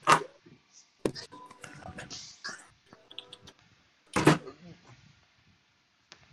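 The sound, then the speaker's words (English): A door bangs and clatters a few times, with sharp knocks near the start and a louder thump midway, while faint voices murmur in the background between the bangs. “You hear that? What, a door?”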